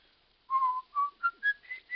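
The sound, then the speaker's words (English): A man whistles a song: a clear tune starts after a brief pause, a run of five or six pure notes stepping upward in pitch, moderately loud, with no talking. “Why'd you whistle that song so much?”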